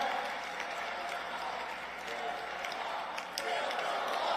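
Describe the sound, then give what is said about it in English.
A large crowd at a Trump rally chants "build the wall" in unison, a dense, steady roar of many voices sustained for several seconds without pause. “Yeah, the crowd chants build the wall.”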